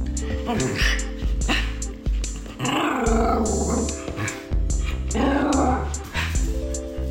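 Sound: dog barking and growling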